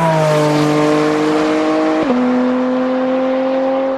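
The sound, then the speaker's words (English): A sports car engine roars loud with a steady, throaty drone, briefly dipping midway as if shifting gears, then holding its strong revving tone to the end. No one speaks. “Listen to that.”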